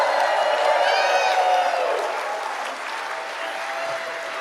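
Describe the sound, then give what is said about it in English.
A crowd bursts into sustained applause with cheers and whoops on top, steady and loud for a couple of seconds before easing slightly while the clapping continues. “round of applause.”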